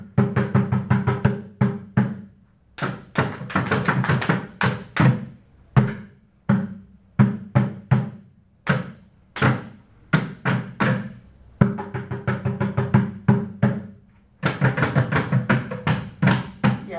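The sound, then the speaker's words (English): Hands tap out rhythmic patterns on a bucket drum in an echo exercise, short bursts of quick hits followed by pauses, then sparser single strikes, alternating phrases as one player echoes another. No talking. “Okay, as a bucket thing. So just be my echo.”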